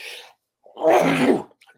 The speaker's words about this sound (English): sorry, my allergy is getting me at the moment, and I don't want to sneeze.